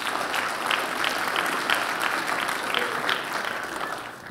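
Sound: audience applause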